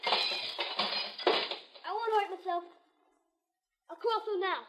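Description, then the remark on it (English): Window glass is knocked out of a window in a quick run of clattering, clinking crashes so a kid can climb through without getting hurt, then a voice speaks briefly twice with a short silence between. “But knock out all the glass so you won't get hurt.”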